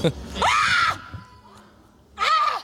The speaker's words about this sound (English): She's eating food, and it's really hot. She's screaming in the restaurant. Oh, my God. Drinking water, spilling it everywhere.